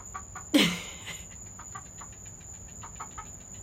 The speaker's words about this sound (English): Yeah, the chicken? We have a chicken here with us.